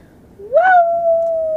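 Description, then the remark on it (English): A single human voice imitates a wolf howl, sliding upward into a long, steady held note that carries loudly for over a second before cutting off. “You sound like a wolf howling.”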